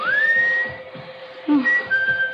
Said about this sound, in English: whistling for you. Answer it, dear.